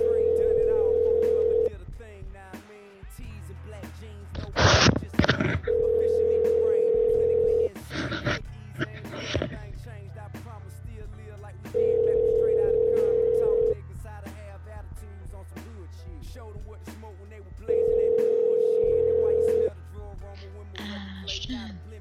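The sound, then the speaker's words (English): A phone's ringback tone for a call to Ashton Kutcher repeats in steady, evenly spaced, quiet bursts, four rings with pauses between, heard fairly clearly alongside brief background noises and some speech. “I don't like when it does the quiet ring.”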